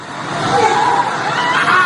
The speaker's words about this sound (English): A quiet Kiev suburb turned into an inferno. The sounds of screaming can be heard.